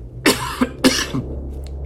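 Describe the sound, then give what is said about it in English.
Two sharp coughs, each followed by a short catch of breath, heard alone over a low steady hum with no talking. “And, sorry, you're going to have to cough again.”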